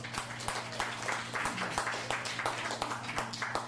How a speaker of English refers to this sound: Give yourselves a hand for coming out tonight. This is a beautiful crowd.